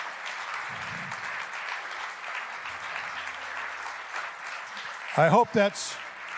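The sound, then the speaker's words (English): An audience claps steadily, a dense, even patter of many hands that carries on throughout, with a short burst of voices rising over the applause near the end. “I hope that's clapping because not because I'm done, but because you can't wait until they put me in the pulpit again, which I'm sure is the case.”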